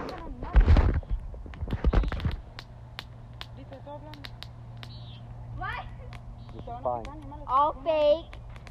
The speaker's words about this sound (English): Fire crackling. We're really happy, Mom. This is satisfying. It is. I like the crackling stuff, so.